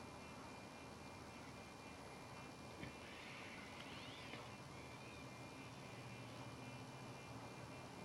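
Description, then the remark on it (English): A boy imitates a cat, letting out a drawn-out, strained meow midway through, half buried beneath a steady, loud hissing noise that fills the whole recording. “That boy swallowed a cat.”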